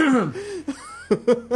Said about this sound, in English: I don't know why, I just started coughing just so... Gosh.